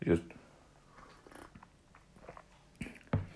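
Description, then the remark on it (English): Someone takes sips from a cup of coffee, with a few short wet slurps and mouth noises separated by quiet pauses, and a louder pair of sips near the end. “Hang on, let me just have a sip of my coffee.”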